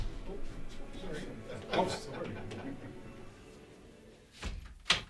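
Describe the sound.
A studio door bumps and thuds as it is opened to welcome people in, with a sharp clunk midway and a louder knock and rattle near the end, over a low murmur of room noise and voices.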